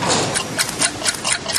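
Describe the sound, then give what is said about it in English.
Steady, rhythmic ticking, crisp bright clicks at an even pace of about four per second, sounding like several alarm clocks at once inside a cargo container being checked at a Dubai Ports World port, over a constant mechanical hum. “I hear something ticking. What have you got in there, my friend? Alarm clocks?”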